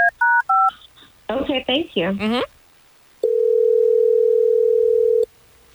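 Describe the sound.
A quick run of touch-tone dialing beeps, a brief muffled voice, then a single long, steady telephone ring tone lasting about two seconds, clear; hosts of the Hot 101.5 radio station in Tampa Bay place a call on air.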